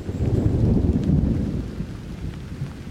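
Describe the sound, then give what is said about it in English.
Steady rain pours down with a deep, rolling rumble of thunder that swells loudly at first and slowly fades, leaving the dense hiss of falling rain. No one speaks. “And yet, almost every day, as natural and as inevitable as breathing, weather fronts form, clouds gather, and rain falls, changing the way the countryside looks, smells and sounds, and how the living things in it behave.”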